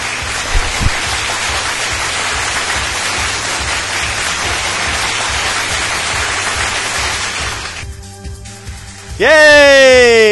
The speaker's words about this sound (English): We've got some applause.